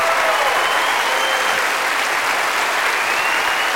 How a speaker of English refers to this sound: Dale fuerte to pay back. Ese aplauso oh, al Señor. Just give him your best clap offering in this house.